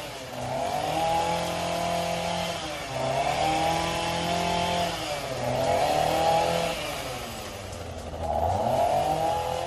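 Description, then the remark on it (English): A chainsaw engine revs up and eases off in steady waves every few seconds, loud, outdoors at 8 in the morning, with no one talking. “Chainsaw”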